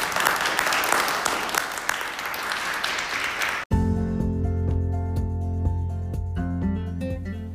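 A crowd claps steadily in a dense, continuous burst of applause, which cuts off abruptly midway and gives way to sustained, humming musical chords.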